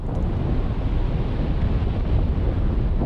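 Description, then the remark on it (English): A steady, dense rumble of glacier ice melting and meeting the sea near Anchorage, with a low, wind-like roar and faint crackling texture, continuous and unbroken, with no distinct crash and no voices. “Matthew Bertner is now working from a cabin near Anchorage where he's recording glaciers as they melt slowly or suddenly fall into the sea.”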